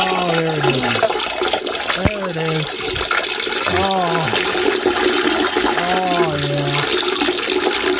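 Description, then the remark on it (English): A toilet flushes with a steady, loud rush of water lasting several seconds, while a voice speaks in short phrases over the noise. “I'm going to go pee real quick.”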